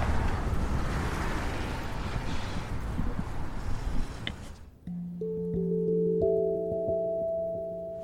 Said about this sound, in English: And we can hear everything most of the time. Like, if someone's walking by the street and they're talking, we can hear that. If a car is zooming by real fast, we can hear that.